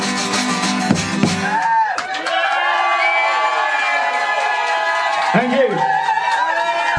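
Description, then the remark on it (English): A live audience erupts in loud, sustained cheering for about seven seconds at the word "country", the loudest cheer of the night, with whoops and high-pitched shouts rising out of a dense crowd roar that holds steady throughout. “The loudest cheer we've had all night just because we said country.”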